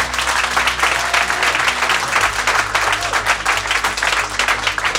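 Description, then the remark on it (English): A crowd applauds steadily for the full stretch, dense overlapping claps forming a loud, continuous wash with no voices standing out. The audience is applauding to vote yes on whether January 6th existentially threatened democracy. “Those who would say yes, our democracy was threatened existentially by January 6th, would you please applaud?”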